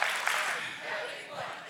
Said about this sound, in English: Say it for yourself now. I'm having one. Clap, clap, clap. Having one.